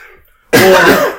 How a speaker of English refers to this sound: I coughed in my hand.